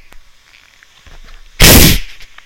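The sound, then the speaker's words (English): A fizzy drink being deliberately fizzed up: faint crackling fizz gives way to a sudden, very loud burst of hissing spray that sprays over a microphone, lasting under half a second, then quickly dies away. No one speaks. “That is the drink. I've just fizzed it up.”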